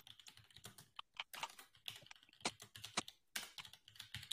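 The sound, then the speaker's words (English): Rapid, irregular clicking of keys on a computer keyboard, fairly quiet, with bursts of taps and brief pauses. No voices are heard. “We're just clicking away.”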